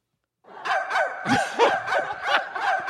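A dog named Hillary, the only dog in the house, barks in a rapid, steady string of about six sharp, yappy barks, moderately loud, with no one talking over it.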